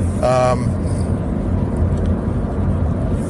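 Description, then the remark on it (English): Another driver gives a single short car horn honk, a bright, steady tone lasting under half a second, over continuous low road and engine rumble that carries on afterward. “I don't know why he honked at me.”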